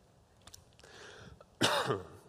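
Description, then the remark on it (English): Someone who is choking clears their throat with a few small clicks and rough rasps, then lets out one loud, harsh cough-like burst. No talking. “I'm going to choke, so I have to drink water.”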